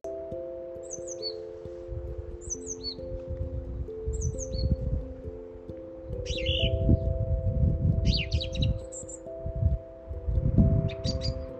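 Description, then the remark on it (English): A song thrush sings clear, bright phrases, repeating each short motif before switching to a new one, recorded on a walk in Worcester, against a steady low hum and rumbling outdoor background noise. “Recorded a song thrush on her walk in Worcester yesterday.”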